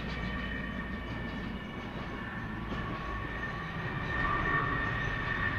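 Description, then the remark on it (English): A huge military transport plane, bigger than a jumbo jet, roars overhead as it comes in to land at QB: a steady, heavy engine drone with a high whine running through it that swells slightly near the end. No one speaks. “That's a massive aeroplane. It's huge. You can put I think 5-6 battle tanks inside that.”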